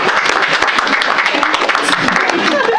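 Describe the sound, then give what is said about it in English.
An audience in San Francisco breaks into steady applause when asked to clap if they like trap music, a dense wash of many hands clapping at an even loudness throughout, with a few voices mixed in underneath. “Round of applause if you like trap music.”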